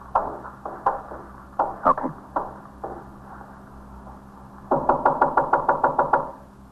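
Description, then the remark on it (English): A police officer knocks on a front door in two bursts: scattered uneven raps at first, then after a pause a fast, steady run of about a dozen loud knocks. “Open the door. I'm a police officer.”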